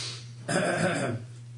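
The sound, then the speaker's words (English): A single loud sniff, a short breathy rush of air through the nose lasting under a second, over a steady low background hum with no talking. “I apologize for sniffing.”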